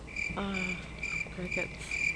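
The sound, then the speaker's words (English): Crickets chirp in a steady, continuous high-pitched trill that fills the whole stretch at moderate loudness, with a few brief lower tonal sounds rising faintly underneath; a single coyote is also heard. “Crickets. Yeah. Crickets.”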